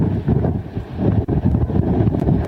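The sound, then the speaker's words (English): Heavy wind from a giant windstorm at Carolina Beach, North Carolina, buffets a reporter's microphone, producing a loud, continuous low rumble with gusty surges and brief dips, roaring steadily throughout with no voices. “He's inexplicably in the middle of a giant windstorm.”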